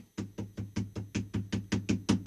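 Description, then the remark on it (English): A quick, even series of about a dozen hollow knocks on a laminate surface, done as a 'knock on wood' gesture, each a short dull tap with a low thud, steady in rhythm and slightly louder toward the end, with no talking. “It sounded more like laminate, but...”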